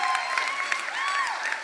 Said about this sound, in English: guys make a round of applause right now, a very warm Red Rocks Church welcome